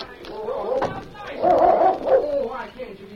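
dog barking

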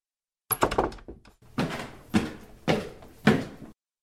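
door opening and closing

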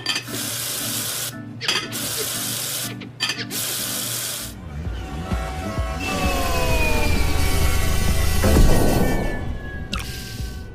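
water running

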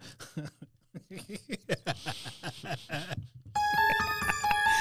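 phone ringtone sound effect

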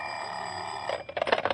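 telephone bell ringing

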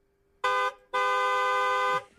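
car horn honking

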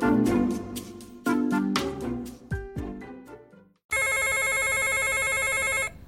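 telephone ringing

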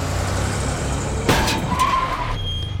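car skidding and crashing

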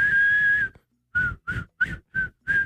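person whistling a tune

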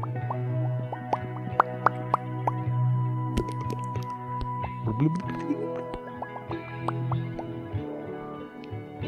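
bubbling water bubbles

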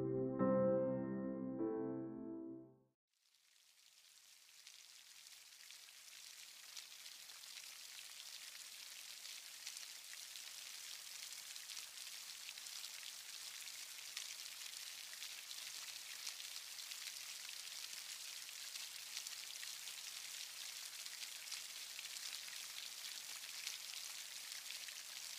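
rain falling

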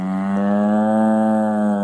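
cattle mooing

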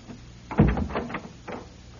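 door being opened

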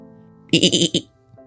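goat bleating

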